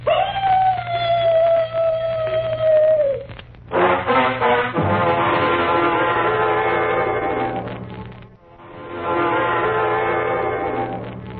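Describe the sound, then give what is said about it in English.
A dog lets out one long, mournful howl, held steady for about three seconds and sagging slightly in pitch at the end, before loud, rough, noisy bursts take over. “First, the mournful dog howl.”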